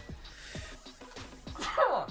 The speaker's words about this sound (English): I don't typically sneeze when I get a new member. That's not like a celebration of membership.